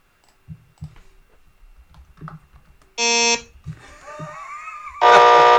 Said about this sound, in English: Oh, I can't like that. No, that's just like a normal buzzer, isn't it?